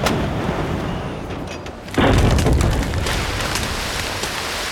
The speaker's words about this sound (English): All right, one cannon hits.